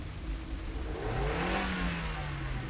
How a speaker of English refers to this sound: Cliff took his foot off the brake and gave the gas pedal a little tap.